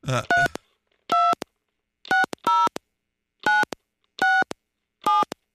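A quick run of telephone dialing tones, about seven short electronic beeps in an uneven rhythm, clear with no one talking.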